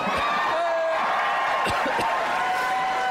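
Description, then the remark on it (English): A live audience cheers and whoops loudly, a dense wash of crowd noise with a few sharp claps and high shouts cutting through, steady for the whole few seconds, as comic guest H. John Benjamin, the voice of Archer, is introduced. “We got us a crowd, peoples.”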